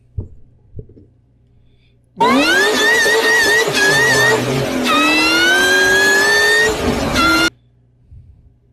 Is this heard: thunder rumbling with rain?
no